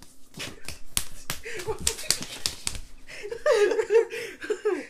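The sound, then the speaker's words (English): A rapid flurry of sharp open-hand slaps lands in irregular bursts during round one of a slap boxing competition, followed by people laughing and calling out loudly. “This is round one of the slap boxing competition.”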